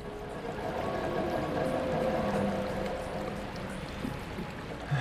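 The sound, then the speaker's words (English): Water floods into a sinking submarine, rushing and pouring steadily in a dense, continuous churning roar, loud, with a faint hollow metallic resonance underneath and no voices. “Now how the heck do I get out of this sinking submarine?”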